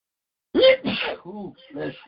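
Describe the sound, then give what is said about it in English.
A single loud sneeze with a sharp breathy burst, followed by a few brief murmured vocal sounds from the same person. “Oh, bless me, Lord. Thank you.”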